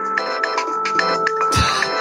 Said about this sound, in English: Our timer, and we're professional. We're totally professional.